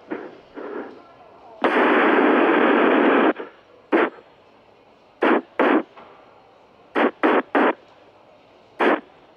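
Popping fart sound effects, so-called popcorn farts: one long, loud sputtering blast, then a string of short, sharp pops in uneven clusters of two and three, each loud and abrupt.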